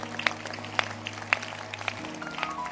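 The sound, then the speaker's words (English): An audience in church claps hands for the choir in a slow, steady rhythm, about five distinct claps roughly half a second apart, over a continuous low droning hum, with no voices. “And as you are clapping your hands, let's also clap our hands for the choir.”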